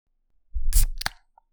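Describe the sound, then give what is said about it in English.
A drink can is cracked open: a rustling scrape, then a sharp metallic pop followed by a short fizzing hiss. No one speaks. “Nice hiss.”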